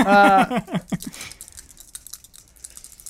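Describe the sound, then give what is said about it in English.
A brief voice at the start gives way to a rapid patter of light, hard clicks and clatters of dice being rolled on a table, thinning out over a couple of seconds. “please roll the dice that are in front of you that you've accumulated so far”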